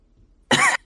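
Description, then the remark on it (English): A single sharp cough bursts out after a moment of near silence, loud and brief, with a faint breathy trail at the end. “Stop coughing.”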